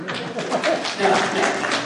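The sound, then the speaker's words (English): A church audience claps steadily for about two seconds as the speaker returns. It is a dense patter of many hands mixed with murmuring voices and a few brief calls. “No clapping needed.”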